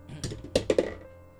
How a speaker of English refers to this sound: That doesn't count. It fell out of my dice roller. That bounced way far.